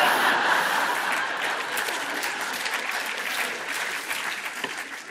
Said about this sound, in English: Right, that's one spontaneous eruption of applause to you, none to me.